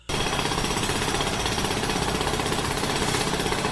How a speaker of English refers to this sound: Look, I can't hear you. There's like a jackhammer or something going when you're talking.